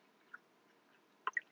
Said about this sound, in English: Excuse me, I just had to have a drink of water.